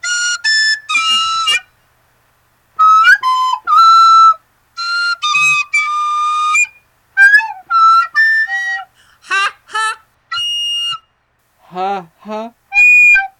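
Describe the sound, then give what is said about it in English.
A recorder plays a short, bright melody of separate breathy notes with clear pauses between phrases, some notes wavering and sliding, played alone and loudly throughout. “You're going to be on my album, …, produced by Stephen J.”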